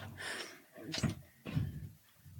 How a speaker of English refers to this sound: I locked the top door. An entry. We're double locked in.